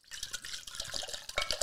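Basil Hayden whiskey pours steadily into a glass, a continuous splashing trickle with brighter glugs and splashes near the end, no voices over it.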